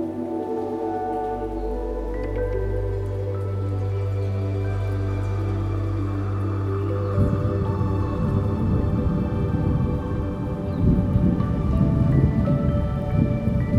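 A steady, dense rainstorm pours down at night, with a deep low rumble underneath and a heavier, more spattering wash of rain building through the second half. No one speaks.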